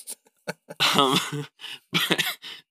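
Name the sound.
coughing fit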